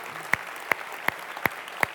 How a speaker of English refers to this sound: In fact, they're sitting with us right now, so they're going to get up and leave. Can we just clap for them as they do? Come on, baptism people, get up. We're going to clap for you.